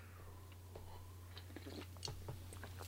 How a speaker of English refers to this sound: Let me have a sip of coffee. Hold on just one sec.